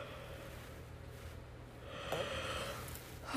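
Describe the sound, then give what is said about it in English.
A long, breathy yawn swells up after a quiet stretch, drawn out over a second or so with airy, nasal rasp, fairly soft. “Oh, got a big yawn.”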